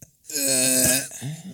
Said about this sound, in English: …'s got a really weird sneeze.